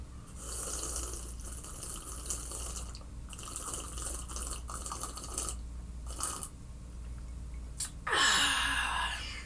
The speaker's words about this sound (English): I had to sip my tea.